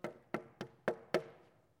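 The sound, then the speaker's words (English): Five firm knocks on a wooden door in a steady, even rhythm, moderately loud, each with a short hollow ring that fades before the next. No voices. “Think about it, if you're in the bishop's shoes, a rough, really, really mean-looking guy comes to your door, knocks on the door.”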